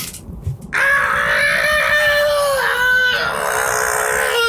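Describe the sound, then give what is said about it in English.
A loud, sustained angry scream, voiced by a person playing a goblin standing on a glass table as a thunder wave rolls out, bursts in after a brief pause and holds for several seconds, wavering slightly in pitch. “The thunder wave rolls out from this goblin standing on the glass table. Screaming out of anger.”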